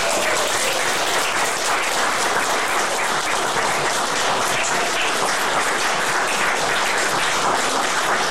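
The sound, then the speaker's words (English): A crowd in Haver de Grace applauds Tom Myers steadily and loudly for several seconds, a dense, continuous wash of many hands clapping with no pauses and no voices. “They clap for way too long for him, too.”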